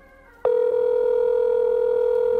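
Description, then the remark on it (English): A telephone ringing tone heard over the line while a call is placed to an office: a steady, loud electronic hum begins after a brief faint lead-in and holds unbroken for about two seconds, with no voices. “While the phone's ringing.”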